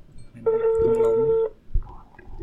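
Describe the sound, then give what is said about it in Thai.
A steady electronic telephone tone sounds for about a second, with stacked even harmonics, as a call is placed to a phone-in listener. It is followed by a brief click and a faint, higher ringback tone starting up. “มีสายโฟนอินนะครับจากผู้ฟังทางบ้านเดี๋ยวเราโทรเลยแล้วกันไม่รอให้มากความนะครับเราจะโทรเลยนี่เสียงดังโทรศัพท์แซมกัน”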